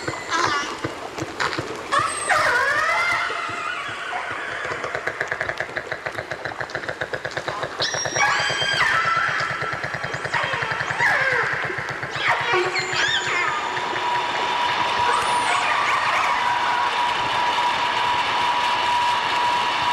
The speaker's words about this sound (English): But this one is definitely not quiet. And I think by listening to this, you'll get a really good idea of what it's like to be underwater when a ship goes over, and particularly if you have very sensitive hearing, such as a whale does.